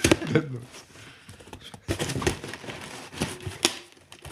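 A small bell wrapped in tape is shaken, giving dull, muffled clicks and clacks in irregular bursts rather than a clear ring, with only faint hints of tone.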